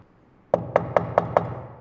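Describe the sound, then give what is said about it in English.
Five soft, evenly spaced taps on a wooden chamber door, with a hollow resonance. The knocks come at a steady rhythm after a brief quiet, with no voices. “suddenly there came a tapping, as of someone gently rapping at my chamber door.”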